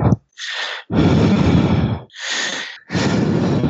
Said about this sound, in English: I hear some heavy breathing. That can only mean one thing.